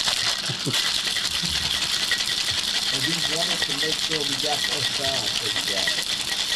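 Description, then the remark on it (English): A cocktail shaker is shaken hard for pina coladas, its ice rattling in a loud, steady, unbroken clatter for several seconds while voices murmur faintly underneath. “There are pina coladas being shaken.”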